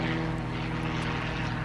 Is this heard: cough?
no